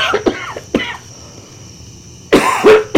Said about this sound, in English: I may have to quit this if I keep coughing.